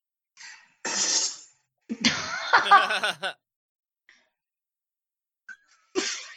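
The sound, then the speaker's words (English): A recorded fart, made with the cheeks open, plays back as a few loud, airy, breathy hissing bursts, the longest turning into a sputtering, buzzy rasp before a final short puff; no talking. “He said, this is one of my farts for the podcast.”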